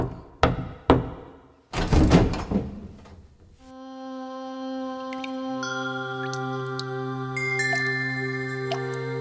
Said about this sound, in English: He walked up to Draupadi's room and knocked on the door.